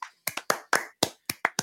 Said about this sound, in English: God, he can have a clap. He can have a clap.